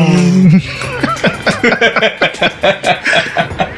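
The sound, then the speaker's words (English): A voice imitates a revving car with a rolled-tongue trill: a steady hum, then a rapid string of fluttering pulses that rise and fall, fairly loud, with no other talk. “It's me rolling the tongue simply.”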